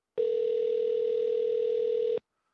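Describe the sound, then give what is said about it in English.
A telephone ringback tone on a call to Taco Bell: one steady, buzzing electronic tone holding for about two seconds at an even loudness, then cutting off into silence. “Let's call them.”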